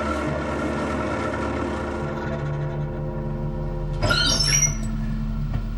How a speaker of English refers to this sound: In a few moments, a small motor coach of extreme decrepitude rattled down State Street.